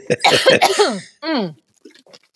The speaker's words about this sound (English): And hang on, I'm just going to cough.